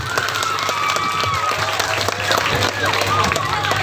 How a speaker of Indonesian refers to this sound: Ya, tepuk tangan.